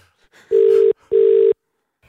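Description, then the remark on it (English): Two long buzzing ring-back tones on an outgoing phone call, each lasting about half a second with a short gap between, loud with no talking, followed by a brief click. “Here we go, Jack. Let's call Baby, it's gold.”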